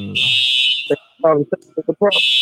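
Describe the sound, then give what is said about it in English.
A building fire alarm blares in a loud, shrill, continuous tone, cutting out briefly while a person speaks, then sounding again at full volume. “I think that alarm got me thrown right now.”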